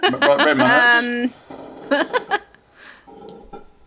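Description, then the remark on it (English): A loud, drawn-out creak from a chair, groaning with a buzzy, tonal edge for about a second, followed by a few quieter voice sounds and chuckles. “That was my creaky chair.”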